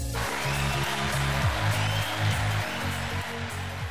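A small group cheering and clapping to welcome a guest, in a steady, dense wash of noise for a few seconds, with a low musical tune playing underneath.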